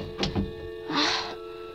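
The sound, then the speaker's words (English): A door is shut: a couple of quick knocking clicks, then a short rushing swish as it closes, fairly quiet, with no one speaking. “Stepped inside again and shut the door.”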